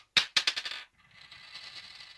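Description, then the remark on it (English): A coin tossed to tip the Geelong versus Collingwood football match lands with a sharp metallic clink, then bounces several times in quickening, fading rattles before spinning down into a soft, shimmering whir as it settles on heads. “It's a heads.”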